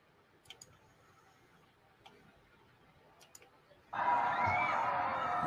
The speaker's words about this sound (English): That's people screaming.